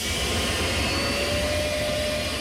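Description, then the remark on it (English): The gas turbine engine of a bronze two-door 1963 Chrysler Turbine Car on the National Mall runs at a steady, loud idle, a jet-like roar with a high whistling whine over a low rumble, unbroken throughout and with no voices. “That's not a jet plane, but a gas turbine-powered 1963 Chrysler turbine car.”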